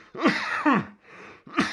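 coughing

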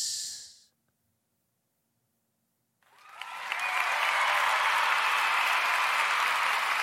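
crowd applause

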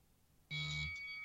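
buzzer

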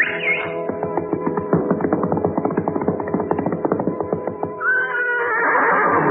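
horse neighing

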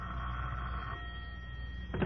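telephone bell ringing

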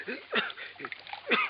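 water being poured

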